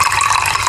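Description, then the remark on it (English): A steady stream of water pouring from a kettle for a tea ceremony, a continuous hissing gush at an even level throughout the short moment, with no talking. “We do not just simply boil a kettle and pour.”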